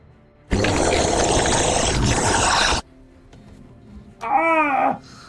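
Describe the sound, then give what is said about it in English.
A monster, a monstrosity, growls without speaking: a loud, rough, rumbling roar lasting about two seconds, followed after a brief lull by a shorter, higher, wavering snarl that trails off. “It's not speaking, it's just growling.”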